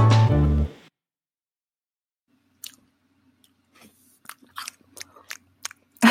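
A loud opening bite into a crisp apple, then a pause followed by wet crunching chews in an irregular rhythm, ending with another sharp crunch.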